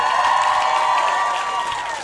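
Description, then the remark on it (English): A crowd cheers and applauds steadily for comedian Michelle Wolf, a dense wash of clapping with whoops and shouts on top, loud and sustained and fading slightly toward the end. “Give it up one more time for Michelle Wolf.”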